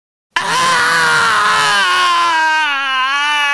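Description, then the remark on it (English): A woman lets out one long, loud, piercing scream that bursts in after a brief silence and holds for about three seconds, its pitch wavering slightly as it goes. “It's pretty funny that she end quoted in the scream, then screamed more so that you could really end quote it.”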